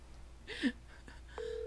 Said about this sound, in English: Ringing, folks. It is ringing. Mm-hmm. Yes. Let me fill the silence with talking about how it's ringing.